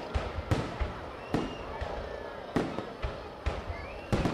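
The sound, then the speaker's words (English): Sharp, irregular cracks of firecrackers, gunfire and explosions during Tet, the Lunar New Year of 1968, in a town in central Vietnam, roughly nine loud bangs in a few seconds, with a low rumbling murmur filling the gaps between them. “But the sound of firecrackers celebrating the Year of the Monkey in 1968 was replaced by gunfire and explosions.”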